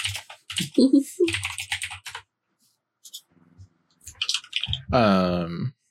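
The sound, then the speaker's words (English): Rapid keyboard typing, a dense run of crisp clicks, pauses briefly, then resumes before a loud, pitched vocal sound cuts in at the end. “Oh, that keyboard sound.”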